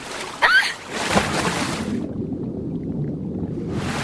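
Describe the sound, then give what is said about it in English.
Breaking ocean waves and a splash, then the sound turns suddenly muffled and low as it dips underwater, leaving a dull, rumbling wash before brighter surf noise creeps back at the end. “And then the characters dip underwater, and you hear it like. Lug, and it's just, it's wild.”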